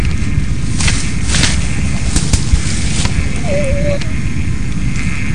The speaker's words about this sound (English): The whole time we were out there, there was this dog whimpering, in addition to some of the other sounds and other noises that we heard.